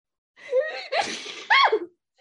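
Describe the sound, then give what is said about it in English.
A single loud sneeze: a quick voiced gasp builds in, then an explosive burst followed by a sharp, voiced trailing exhale, with no talking around it. “I think I'm about to sneeze. Hold on.”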